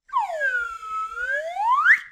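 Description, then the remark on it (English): A slide whistle swoops down in pitch and then glides steadily back up to a bright, high squeal, one continuous two-second tone with no talking. “Do you legit have a slide whistle for that right now?”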